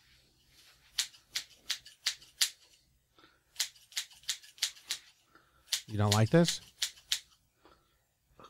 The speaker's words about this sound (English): I also don't like the scissor sound.